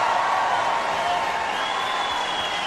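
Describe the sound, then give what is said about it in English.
A large crowd roars and applauds at a rally, a dense, steady wash of cheering voices and clapping that stays loud and unbroken throughout. “And the crowd roars.”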